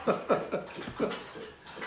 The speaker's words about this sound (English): That's David's dog. It's okay.